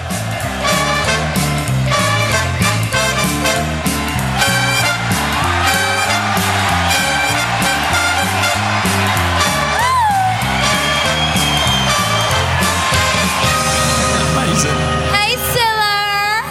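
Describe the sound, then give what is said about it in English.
A loud crowd cheers and whoops without letup as three contestants are brought on, a dense wall of voices with occasional sharp rising whoops cutting through, especially toward the end. “The crowd reaction's anything to go by. The crowd like the look of it.”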